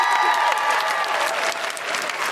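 Steady audience applause fills the whole stretch, a dense wash of many hands clapping at a loud, even level, with a few faint tonal streaks and no talking.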